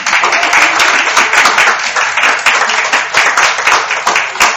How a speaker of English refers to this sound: And the only reason why I asked for that applause, that will be the only entertainment you're going to get.